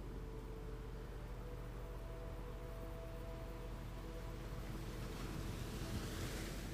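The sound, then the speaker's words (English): Steady ocean surf rushes against a shore, a continuous broad wash of water that swells louder near the end as a wave breaks. Low wind rumble sits underneath, and no one speaks. “The waves in front of you crashing.”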